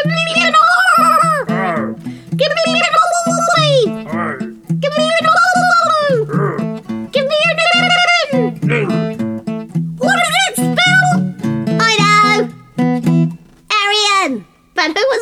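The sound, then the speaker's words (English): A voice imitates dolphin calls with a loud string of squeaky, whistling chirps that swoop up and down in pitch, repeated in quick bursts throughout. “sound in the water? It was the dolphins.”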